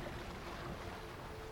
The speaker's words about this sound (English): Leaving you to the sound of the sea and little chitters from Scout.